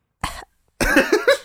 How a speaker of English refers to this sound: No, you've coughed enough. Like actual actually, coughing. We know. We've heard it.